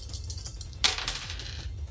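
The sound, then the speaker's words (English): Dice clatter onto a table, rolling a 6: one sharp, bright hit followed by a short rattling tumble that settles within about a second, over a low steady background hum with no talking. “Alright, so that's a 6 that I rolled.”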